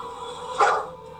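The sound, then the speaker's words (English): A single short dog bark rings out midway through, moderately loud against a steady low background hum, with no one talking. “Oh, don't snitch him out, dog. Don't do it.”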